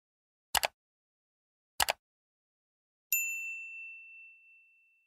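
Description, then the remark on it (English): Two quick clicks followed by a bright notification bell ding for a video's subscribe bell, ringing out and fading slowly over a couple of seconds, clear with no talking. “Make sure you hit the bell notification next to the video, next to the subscribe button, so you never miss a video.”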